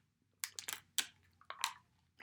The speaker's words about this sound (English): Excuse me. Let me take a swig of this water.